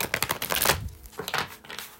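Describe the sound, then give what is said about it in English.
Shuffling of a Tarot Mucha deck of tarot cards: a burst of rapid, papery flicking and tapping, a short pause, then a second quicker riffle, with no talking. “Let's get a quick shuffle.”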